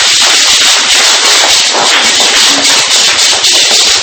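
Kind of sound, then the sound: crowd, audience applause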